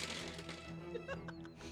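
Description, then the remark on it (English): Dice clatter across a tabletop as a player rolls them for a reroll in a tabletop game, a quick burst of small hard clicks and taps, fairly quiet, with a faint steady hum in the background. “I'm just going to roll it.”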